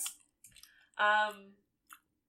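Wet chewing and slurping of chicken carbonara pasta with sauce, a few short squishy bursts with a brief voiced hum in the middle and one final smack, heard alone without talk.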